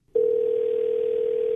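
A steady, unbroken telephone dial tone as hosts of the radio station New Country 103.1 place a call; it begins abruptly and holds at an even, moderately loud level, with no voices present.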